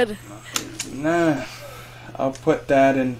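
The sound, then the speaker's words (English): A voice imitates a creaking door with a rising-then-falling squeak, set between a few sharp clicks and knocks, followed by more short vocal creaks and thumps. “You make a door sound we can use?”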